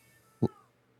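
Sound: cat meowing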